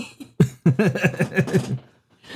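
A loud coughing fit: a sharp opening cough followed by a rapid string of about seven raspy, throaty hacks, then quiet. No words are spoken.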